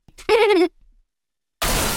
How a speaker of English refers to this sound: What on earth was that? There's a fender bender in front of the building. Two anti-personnel-looking limos just pulled up and rear-ended each other.